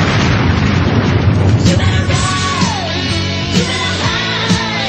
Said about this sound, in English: But it was full stereo sound that made the explosion.